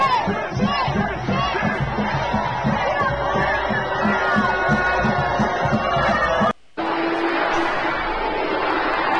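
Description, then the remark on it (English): A large crowd of protesters screams and shouts at Marjorie Taylor Greene as she comes out, a loud, continuous roar of overlapping voices, cutting out for a split second before the yelling resumes just as intensely. “Then they have Marjorie Taylor Greene come out, and they all start screaming at her.”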